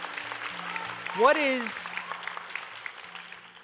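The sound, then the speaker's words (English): A crowd claps steadily throughout, with a loud rising whoop from someone in the audience partway through before the applause gradually thins out. “Y'all can give a round of applause, man.”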